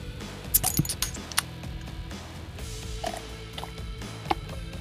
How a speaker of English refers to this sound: So let's get to it. Let's open these beers.